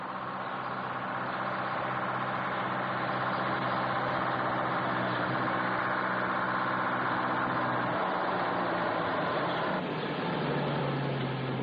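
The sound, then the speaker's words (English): A heavy lorry engine rumbles loudly and steadily as it comes up fast along a narrow country road in the morning, its deep drone settling into a lower idle near the end as it stops. No voices are heard. “Hearing a lorry coming up fast behind them, they stand in the middle of the road and thumb for a lift.”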